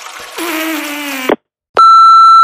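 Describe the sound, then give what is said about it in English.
A low, buzzy droning tone runs for about a second, then after a brief silence an answering machine's loud, steady high-pitched beep sounds and holds to the end. No one speaks. “Again, I'm sorry I missed your call, but at the tone, leave your name and number, and I'll get back to you.”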